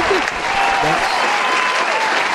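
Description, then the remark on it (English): Steady applause from a group fills the moment, many hands clapping densely with a faint murmur of voices mixed in underneath, applauding someone's cough. “Hey, you got a clap for that cough.”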